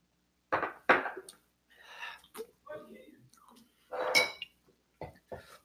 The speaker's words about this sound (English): Before we answer that question, yeah, let's take this sip of water. Let's take the sip of water. And you know? Here we go. All right, we're going to dink and sink this water.